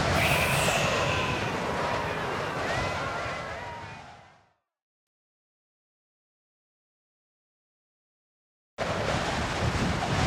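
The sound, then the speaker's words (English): Strong outdoor wind on a windy day roars and buffets the microphone for several seconds, then fades into a few seconds of silence before the gusting noise abruptly returns just as loud. “Oh no, the wind has carried my scarf away.”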